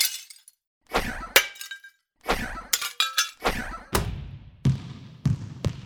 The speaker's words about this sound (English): various other household items prove equally unsuccessful at creating multiple window smashes